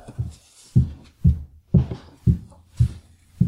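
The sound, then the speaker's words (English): A woman's high heels climbing the staircase of a home: about seven evenly spaced steps, each a firm thud with a light click on top, in a steady walking rhythm with no voices. “That's my wife's high heels going up our staircase.”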